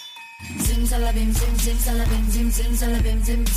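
Ringing bells play a repeating melodic figure in a song intro, loud and up front over a deep sustained bass and a steady beat with bright cymbal-like hits; the same bells also sit behind the chorus hook.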